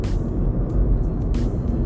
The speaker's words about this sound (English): This doesn't look good. This doesn't look good. We're literally sitting in traffic.